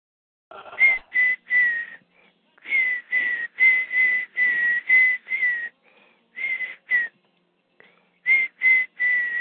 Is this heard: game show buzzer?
no